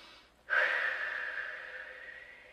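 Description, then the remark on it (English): After a brief quiet moment, a steady breath is drawn in deeply through the nose during a guided meditation, a long airy rush lasting about two seconds that fades slightly toward the end. No one speaks. “Make yourself comfortable and take a nice big deep breath in through your nose and then sigh out any and all stress.”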